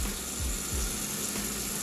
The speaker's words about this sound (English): Did you hear some water in the background? Because I'm chopping up onions and I'm about to put the whole onion in there.